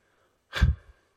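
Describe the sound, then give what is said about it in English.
A person imitates a dog's morning fake sneeze: one short, breathy, puffing burst of air that fades quickly, with no other sound around it. “He starts with a fake sneeze. It's just a slight little lob.”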